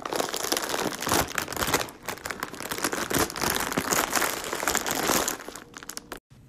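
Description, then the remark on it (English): A crinkly plastic bag of chips being pulled open and rustled, with loud crackling and crunching that goes on for several seconds before stopping abruptly. “Bag of chips being opened.”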